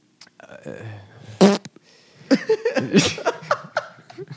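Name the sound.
fart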